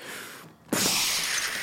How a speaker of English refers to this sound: The skylight glass rains down all around you.